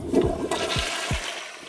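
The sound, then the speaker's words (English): A toilet flushes, a rushing swirl of water with a few deep gurgling glugs as the bowl drains, steady and fairly loud throughout. “It's the toilet.”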